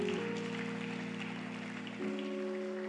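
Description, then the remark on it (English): A crowd applauds steadily throughout at a Gospel Encounter church service, a dense even patter of many hands, while sustained organ-like chords hold underneath and shift to a new chord near the end. “Put your hands together for them.”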